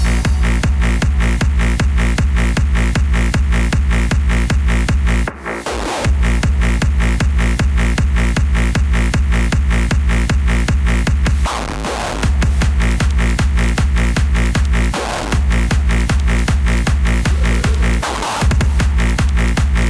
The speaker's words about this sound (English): Then, add some snare drums on top. And then, add your heaviest bass drum.